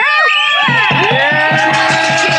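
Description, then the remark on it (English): A loud crowd cheers and applauds for essential workers, with overlapping whoops and shouts rising and falling over a dense wash of noise and a quick, repeating low pulse underneath. “Round of applause for all our essential workers out here today and around the country, please.”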